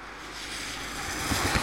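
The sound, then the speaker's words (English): A car coming along a snowy road on the Woodhead Pass, its tyres making a broad, slushy hiss that steadily swells in loudness, with a few low rumbling thumps toward the end. No one speaks. “Here is another car about to pass me.”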